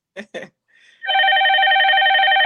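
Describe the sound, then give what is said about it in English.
A couple of short vocal sounds, then a telephone starts ringing: a loud, steady electronic ring that swells in quickly and keeps going without a break to the end. “And I don't think either one, unless that's him calling me there. I sound like the money phone again.”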